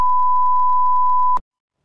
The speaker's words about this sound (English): You know what I love about the bleep sound? It's that no matter what language you speak around the world, you always know what it means.